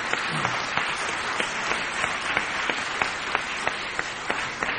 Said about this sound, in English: Well, I don't know what that makes you feel like, but that makes me feel like giving the Lord a good clap offering.